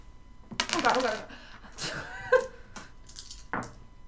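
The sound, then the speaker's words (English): Many dice rattle and clatter across a hard tabletop, a quick burst of sharp clicks and knocks that settle, followed by a few scattered taps, with faint voices murmuring underneath. “There's so many dice on my table right now. Where's the other one?”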